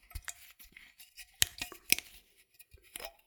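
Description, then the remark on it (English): The plastic screw cap of a bottle of spirits is twisted open, giving a run of small dry clicks and crackles with two sharper snaps midway, and no voices. “Plastic screw cap.”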